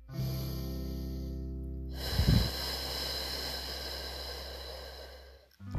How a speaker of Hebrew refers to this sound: עכשיו לילה, אנחנו מכינים את הגוף שלנו לשינה. אנחנו לוקחים נשימה עמוקה מהאף, מכניסים את האוויר לגוף שלנו.